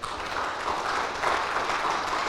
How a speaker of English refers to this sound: Let's get a round of applause for that real quick.